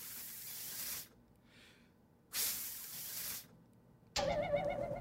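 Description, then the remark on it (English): Two breathy bursts of air hissing through a dog whistle, each about a second long with a pause between, with no audible tone; a different, tonal sound starts abruptly near the end. “Oh, it's a dog whistle.”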